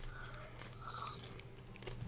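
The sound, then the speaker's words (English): Someone chews popcorn with a steady run of crisp, crackly crunches over about two seconds, fairly quiet and with no talking. “I got the popcorn open.”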